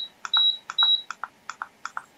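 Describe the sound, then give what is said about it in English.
A rapid series of button clicks as the minus key on a heater's thermostat is pressed multiple times to set it to 65 degrees. The first few clicks are paired with short, high electronic beeps, and the later presses keep clicking quietly with no beep, without any talking. “Notice it's no longer beeping at me. That means we're at 65.”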